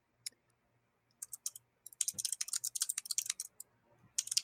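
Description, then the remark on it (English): Quick bursts of typing on a computer keyboard, sharp clicky keystrokes coming in uneven clusters, with a few short pauses between flurries and no talking. “You guys actually have to live with my creepy alien typing.”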